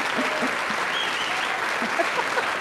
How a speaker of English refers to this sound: Wow. That was a massive applause.